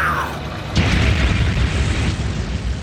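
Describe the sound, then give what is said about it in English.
A tank cannon fires with one sudden, heavy boom, followed by a deep, rolling rumble that lingers for a couple of seconds. A brief falling tone comes just before the blast. “And just on a bigger scale, it's what you do with tanks. Fire!”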